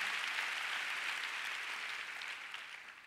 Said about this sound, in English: Oh, come on, go ahead and give Abba Father a big clap. Let him know that you love him.